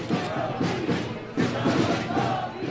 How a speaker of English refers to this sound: Some stopped to shout at the handful of counter-protesters, mainly women, standing to one side. They're holding a pro-choice banner, and a few of them are loudly banging drums.